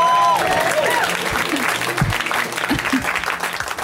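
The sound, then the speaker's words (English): A comedy show audience applauds steadily for about four seconds as comedian Sean Patton is welcomed to the stage, a dense wash of clapping with scattered cheers and a brief whistle at the start, loud and sustained throughout. “Sean Patton, let him hear it.”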